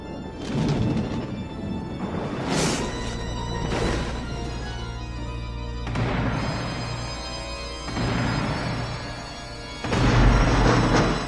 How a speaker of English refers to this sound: Fester Adams, I demand that you knock again.